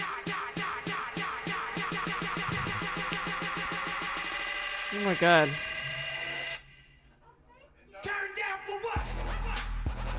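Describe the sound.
An electronic dance hip-hop track builds with a rapid, buzzing synth pulse that rises in pitch, drops out to near-silence for a moment, then slams back in loud over deep bass, with a voice exclaiming.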